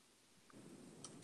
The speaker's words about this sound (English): Oh my god. You were typing, bro.